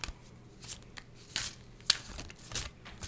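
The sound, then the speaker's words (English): Tarot cards being shuffled: a series of soft papery riffles and swishes with crisp snapping accents, irregular bursts over a few seconds, with no one talking. “We're going to shuffle, shuffle, shuffle.”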